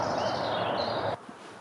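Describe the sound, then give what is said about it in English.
A dense wash of birdsong at dusk, many high chirps and trills overlapping into a steady, busy chorus that cuts off abruptly just over a second in, leaving near quiet. “there's a nice sort of dusk chorus.”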